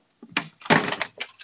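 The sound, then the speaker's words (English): A door is opened because someone is at it, with a short burst of handle rattling and creaking followed by a louder sweep and scrape as it swings, then a couple of softer knocks. No one speaks. “So it's sort of like, hold on, there's someone at my door.”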